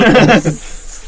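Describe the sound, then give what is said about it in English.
A voice imitates liquid being poured from a cup during a tabletop role-playing game: a short voiced, gurgling burst that trails into a soft, breathy hiss that quickly fades. “He just whipped out the cup, poured it on my.”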